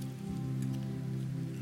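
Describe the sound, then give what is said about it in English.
A small prefilled communion cup is turned over and the foil seal is peeled off its larger, juice side, giving a continuous crinkly crackle over a steady low background hum, with no one talking. “I'll turn the cup over and peel off the larger side where the juice is.”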